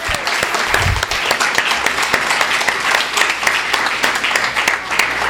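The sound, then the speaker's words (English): An audience applauds a young student author again after her reading, many hands clapping for several seconds in a dense, continuous patter at an even loudness, with no voices over it. “Yeah, well, let's clap again for her.”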